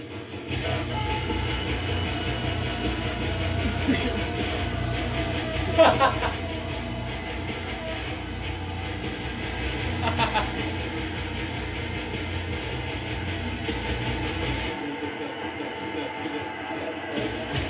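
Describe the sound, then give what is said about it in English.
A washing machine churns with a steady mechanical rumble, thumping and clattering in a repeating rhythmic beat, with a few heavier knocks standing out along the way. “I don't know how well you can hear this, but my washer is making a beat.”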